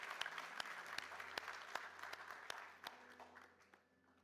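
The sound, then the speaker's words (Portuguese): A church audience applauds in praise of the Lord in a dense, steady wash of clapping with sharper individual claps standing out, a faint low hum underneath, fading somewhat toward the end. “E toda a igreja diz, aplauda ao Senhor que Ele merece, Ele é bom, Ele é fiel.”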